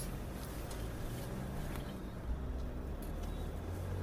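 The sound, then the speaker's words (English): A steady low rumble of road and engine noise fills the cabin of a moving car in India, driving from Khan Market to the Ambience Mall of Vasankunj, constant and fairly quiet, with faint brief clicks and no talking. “We're now in the vehicle, in the car.”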